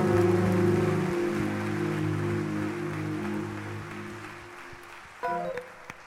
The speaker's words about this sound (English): Can you clap your hands at this time as we close?